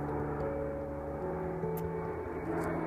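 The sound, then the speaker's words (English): A jet airplane engine roars steadily overhead on a cold night, a dense, continuous rumble with a faint whining tone, holding at a constant loudness throughout with no voices. “Really, we're looking forward to the sound of just that jet engine roaring across like this.”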